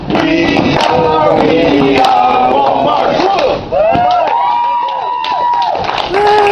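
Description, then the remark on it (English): A loud crowd claps and cheers for several seconds during a "We are Walmart" company chant, with many overlapping shouting voices rising and falling over steady rhythmic clapping. “Now I'm really clapping, because getting to work, moving these fucking pallets around, is infinitely better than that fucking horse shit that you just did.”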